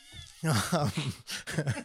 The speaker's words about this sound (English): Paul? What is that? Cats are fucking the...